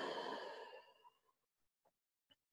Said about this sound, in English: Outstanding breathing.